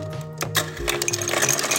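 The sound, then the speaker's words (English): A built-in fridge ice dispenser at a friend's house, recorded on a phone, whirs with a steady motorized hum while ice cubes clatter and rattle down the chute, for under two seconds with no talking. “At friends' houses, every fridge comes with a built-in ice dispenser. I've started recording them on my phone.”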